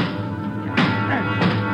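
Two hard metallic thuds, about two-thirds of a second apart, as a jammed elevator control lever is kicked, over a steady low mechanical hum.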